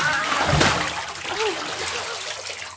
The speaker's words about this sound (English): They're over there, they're doing little chemicals, they're putting little vials into other things. There we go. Bubbles, acid.